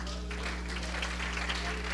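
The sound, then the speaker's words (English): An audience claps their hands in praise to the Lord, a dense, steady wash of many overlapping claps with no distinct beat, sitting over a constant low electrical hum. “Let's give the Lord a hand clap of praise if we could.”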